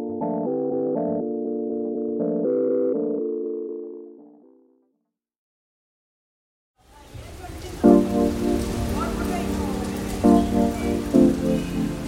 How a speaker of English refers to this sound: The city of Mumbai, like much of the rest of India, has been suffering torrential monsoon rains.